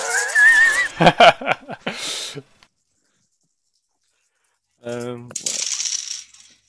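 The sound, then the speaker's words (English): Dice rattle and clatter across a tabletop in a quick burst of sharp clicks lasting a couple of seconds, rolled by a player trying to dodge in a game, followed by a pause, then a voice briefly speaking. “It occurred to me I'm rolling away to dice, so I'm going to throw that away.”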